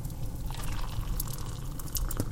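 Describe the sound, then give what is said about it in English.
Tea pours steadily into a cup from a just-boiled kettle, a soft continuous trickle with small splashy drips and bright splatters near the end, with no voices over it. “And the kettle's just boiled. Let me pour you some tea.”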